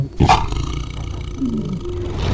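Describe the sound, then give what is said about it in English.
A chorus of about 20 big cats at a zoo roaring at once, deep overlapping growls and roars swelling and holding steady, loud and continuous for a couple of seconds with no talking. “All those noises of like 20 cats all together vocalizing at the same time.”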